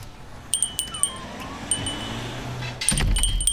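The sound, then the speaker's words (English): A new door bell at the Soggy Doggy Coffee Shop jingles in a quick cluster of bright, high chimes that ring on and fade, then jangles again with a low thud as the door moves. “Hey, there's a new bell on your door.”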